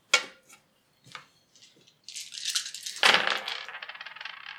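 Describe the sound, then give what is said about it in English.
A few sharp clicks of dice, including a black one, being handled during a tabletop role-playing game, then a bright clatter as they tumble and rattle across a hard table, with a second louder burst before they settle. No voices. “Can I have one more black dice?”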